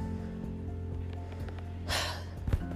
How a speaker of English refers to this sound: I'm sorry, God. I keep breathing hard. I'm just like, because I'm really feeling what I'm saying right now, and I hope that somebody else feels me.